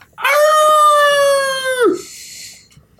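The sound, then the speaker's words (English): A person lets out one long, loud imitation of a werewolf howl, holding a steady pitch before sliding down at the end, followed by a faint breathy trailing noise. “That was a werewolf howl.”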